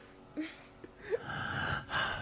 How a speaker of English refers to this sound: Okay, let me give that a running start and let him do the whole breathing thing without me interrupting it.